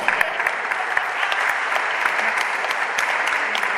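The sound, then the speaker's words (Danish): A crowd applauds steadily, with dense overlapping hand claps forming an even, loud wash of sound that holds at roughly the same level for the whole few seconds. “Jeg må godt klappe af andet, jeg synes det.”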